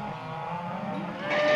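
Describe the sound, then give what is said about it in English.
A low, drawn-out cattle moo on Ladd Drummond's family cattle ranch in Pawhuska, Oklahoma, near Tulsa, at 5 a.m. in record heat, holds steady and grows a bit louder toward the end, with a faint rumbling, engine-like background beneath it. “His family's been herding cattle for four generations here in Pawhuska, Oklahoma, near Tulsa.”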